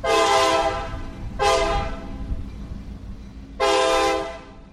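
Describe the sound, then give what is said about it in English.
A train horn blares three times, a long blast, a shorter one, then another long one, over the steady low rumble of a passing train. “live in a small white trailer near the railroad tracks, a little more than a mile from where his old house stood”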